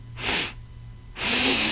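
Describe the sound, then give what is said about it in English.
A person imitates a Nazgul sniffing with two long, breathy, hissing inhales, fairly loud, separated by a short pause. “And then they focus on the Nazgul sniffing.”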